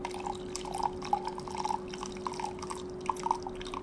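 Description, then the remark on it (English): Liquid trickles and splashes into a cup, a quiet, uneven patter of drips and small pours over a low steady hum. “Liquid being poured. It's so calming. Especially coffee.”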